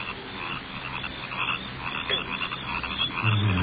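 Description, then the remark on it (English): A dense, steady chorus of crickets chirping at night, many overlapping trills blending into a continuous shimmering drone at moderate volume, with no voices. “Crickets are getting on my nerves.”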